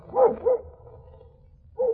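A dog barks three times, two quick barks close together followed by a single bark after a pause, fairly loud over a low background rumble.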